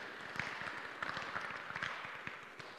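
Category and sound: crowd, audience applause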